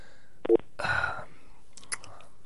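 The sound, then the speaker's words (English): A single short electronic beep, like a phone key tone, followed by a burst of handling noise and a few faint high clicks as someone phones a man; there is no talking. “It's just phoning up this muppet.”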